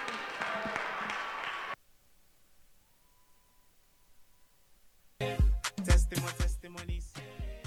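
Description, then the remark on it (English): A short burst of dense audience clapping cuts off abruptly after about two seconds, followed by near silence, then loud music with heavy bass and percussive hits. “Oh, clap for them, clap for them, clap.”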